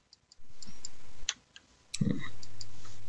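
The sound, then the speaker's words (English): Dice are rerolled, clattering briefly on a hard surface in a quick burst of small clicking impacts, then a louder knock near the end, over a steady low background hum with no one speaking. “So let me reroll that.”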